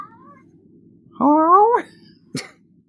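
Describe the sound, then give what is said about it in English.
A female cat lets out a single drawn-out meow that rises and falls, followed by a short sharp chirp or cough-like sound, against a quiet background. “She was asleep for hours, and then like as soon as we started recording, but anyway, I love cats.”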